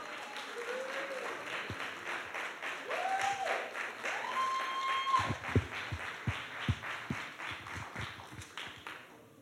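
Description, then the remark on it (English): A crowd applauds steadily, cheering on people being baptized, with dense clapping and scattered sharp claps standing out, while faint whoops and cheering voices rise above it, lasting the whole stretch. “Cheer them on.”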